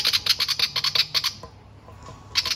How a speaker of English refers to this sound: The Willy Wagtail's back, listeners. Let's see if it does a little chirp. Nah, it's just chilling out. Cool, no worries, just checking. Thought we might hear a chirp from a Willy Wagtail. That'd be nice. Editor Dan, throw one in now for fun.